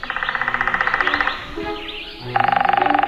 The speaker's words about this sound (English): a woodpecker that has some interesting ideas about what automobile radiators are for is today's featured feathered friend